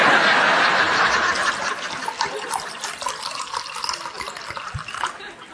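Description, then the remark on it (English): Wine pours steadily into a glass, a continuous liquid trickle that holds for several seconds before easing off, with small splashing variations near the end. “Oh, sorry, would you like a glass of wine?”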